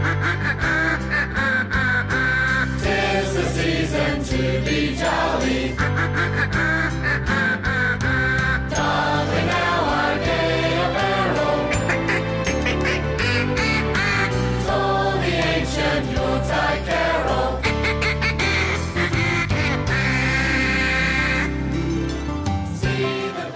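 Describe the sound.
A duck call quacks repeatedly in rhythm over a loud, full band playing a cheerful Christmas tune, the nasal honks woven into the melody throughout.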